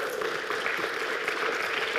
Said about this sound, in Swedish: Välkommen upp. Ge en stor applåd också.